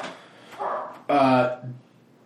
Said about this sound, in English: I wonder what those dogs are barking at.